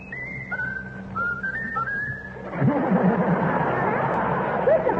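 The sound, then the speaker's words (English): A trained pet bird, told to whistle, whistles a short, lilting tune in several clear rising and falling phrases, then the whistling gives way to a louder rush of noise with a voice murmuring underneath. “Now Raffles, you're gonna whistle.”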